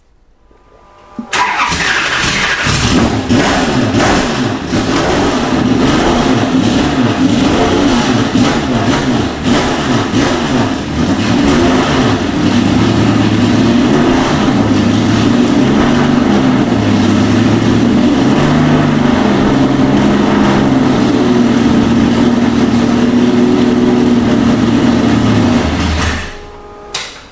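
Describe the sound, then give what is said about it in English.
A Datsun 240Z race car engine in a shop cranks and fires up, then settles into a loud, rough idle with repeated throttle blips and revs, running continuously for about twenty-five seconds before cutting off. “We will fire it up so you can hear it, but obviously we can't drive it because it's a race car and all we have is a bunch of streets and a bunch of cops around us.”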